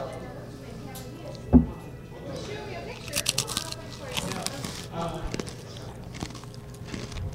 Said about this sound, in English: Can you hear that? You can just hear layers and layers of crunching. You can like hear the pretzel break up.